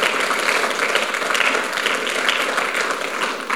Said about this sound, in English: Now that's where you should have clapped. That's where he deserves a clap.